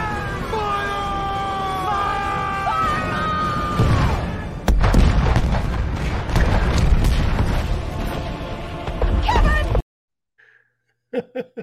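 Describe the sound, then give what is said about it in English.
Wavering whistle-like tones lead into a sudden loud cannon blast, followed by several seconds of rumbling, crackling aftermath that cuts off abruptly into near silence. “We had to fire the Kevin Cannon for our Kevin Durant update today to kick things off”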